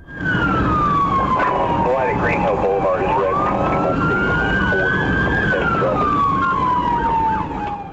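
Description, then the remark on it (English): A loud police siren, from police dash cam audio at the start of a 28-mile slow-speed chase from Brentwood to Nashville, Tennessee, in rush hour traffic, wails steadily in slow rising and falling sweeps, with indistinct voices murmuring underneath and a faint vehicle rumble. “This is the actual dash cam audio from police as they began a 28-mile slow-speed chase from Brentwood to Nashville during rush hour traffic.”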